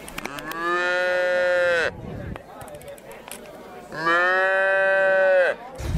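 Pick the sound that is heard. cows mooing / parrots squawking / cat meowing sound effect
cows mooing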